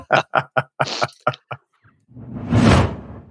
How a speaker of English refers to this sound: Let's go ahead and swoosh you out, and we'll be welcoming you in as we start to wrap in just a second.